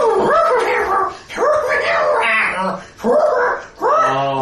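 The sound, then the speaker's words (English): A voice imitates an owl's cry with a run of wavering, high-pitched hoots and whines, four rising-and-falling calls in quick succession, loud and alone without ordinary speech. “And the owl goes...”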